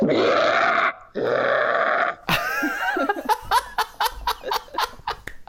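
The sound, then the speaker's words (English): A person imitates an angry grizzly bear with two loud, rasping roars, each about a second long, followed by a burst of breathy laughter. “That's an angry grizzly bear.”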